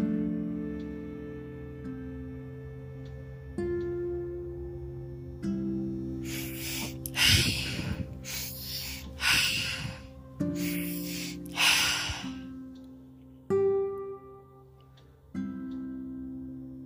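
A person breathes deeply and rhythmically in and out in a guided breathing pattern, several strong airy whooshes in a steady rhythm, fairly loud over a soft sustained musical drone with no talking.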